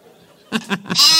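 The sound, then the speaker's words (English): A sheep bleats abruptly after a moment of near silence: a short, loud, wavering cry in three quick pulses that ends on a brighter, strained note, alone with no talking. “Yes, there's the sheep of truth.”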